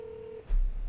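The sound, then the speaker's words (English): A single steady telephone dialing tone beeps for about half a second as a call is placed to a listener, then cuts off into a low, muffled rumble. No one speaks. “We have to call him and make a deal, and none of us can hang up until we have one.”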